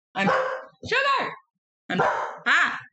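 A dog barks, four loud, drawn-out barks in two pairs separated by a short pause, with a slightly whining, howl-like tone.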